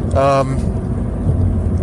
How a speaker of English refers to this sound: Uh-oh, there's traffic. There's a lot of traffic.